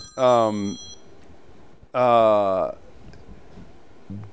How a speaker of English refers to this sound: I'm getting a phone call right now.